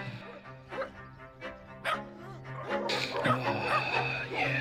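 animal, dogs barking and whimpering

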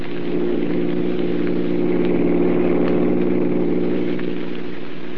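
vehicle, car engine running

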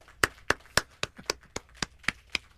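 crowd, applause

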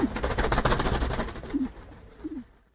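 bird, pigeons cooing

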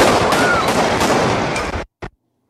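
impact, gunfire

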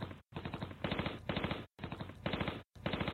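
sound effect, gunfire exchange

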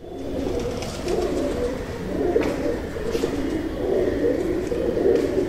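bird, rock pigeon cooing

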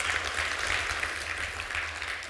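crowd, audience applause

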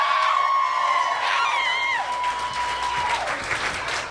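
crowd, audience applause and cheering

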